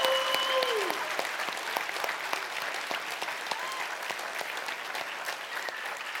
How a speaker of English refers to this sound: So I'm going to give you another chance to redeem yourself this morning. Let's give the Lord Jesus Christ a great hand clap this morning.